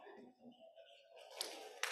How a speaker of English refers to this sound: Yeah, you can clap.